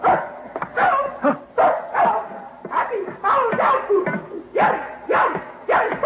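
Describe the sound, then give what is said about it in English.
A small female dog barks and yips in a rapid, excited string of sharp bursts, fairly loud, about a dozen yaps over several seconds. “Do you hear? She's saying, happy holiday, dog food.”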